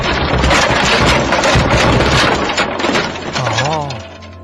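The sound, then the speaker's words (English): A loud, dense clattering crash of a knocked-over pyramid of tins, coming from a side hall aboard a ship, rattles on for about two and a half seconds before dying away, followed by a short wavering vocal sound. “You hear a crashing sound.”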